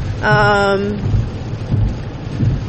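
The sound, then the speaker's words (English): Heavy rain pours steadily and fairly loudly, with low rolling rumbles of thunder underneath and a brief tonal, voice-like hum near the start. “Or maybe I record this whole thing and then have to delete it because it's loud with rain playing in the background.”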